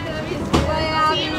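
A car engine hums steadily nearby, with a brief thump partway through, as the vehicle pulls off and drives away.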